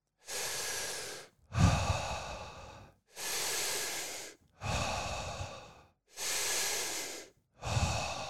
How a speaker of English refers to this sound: we'll be breathing in through our mouth and out through our mouth only. There'll be no pause at the top and no pause at the bottom